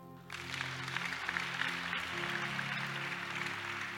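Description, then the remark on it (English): An audience breaks into dense, steady clapping after a brief pause and keeps applauding evenly throughout, with low sustained keyboard-like tones humming underneath. No one speaks. “You didn't clap.”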